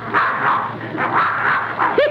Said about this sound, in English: Look. Well, I'll be darned, there's that mad dog, Adolf.